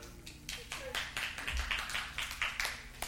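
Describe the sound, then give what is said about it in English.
A crowd claps in uneven, overlapping bursts, with not one man among them clapping, a patter of hands that rises and falls for a few seconds with some low murmuring underneath. “I noticed not one man clapped in that whole.”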